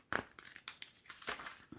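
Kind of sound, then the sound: household object, paper rustling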